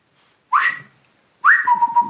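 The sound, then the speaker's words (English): A person whistles their signature whistle: two short phrases, a rising note, a pause, then a longer rising-and-falling tune, fairly loud with no talking. “So I did my signature whistle”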